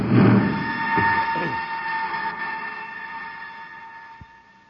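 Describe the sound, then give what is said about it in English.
A rocket ship setting down on the Turquoise River: a heavy rumbling roar with steady humming tones that gradually winds down and fades, ending with a brief dull thud, with no voices. “Commander, they've landed.”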